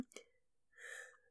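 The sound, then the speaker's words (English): A single sneeze: a quick sharp inhale, then a breathy, voiced burst lasting under half a second, fairly quiet, with nobody talking. “I'm going to sneeze.”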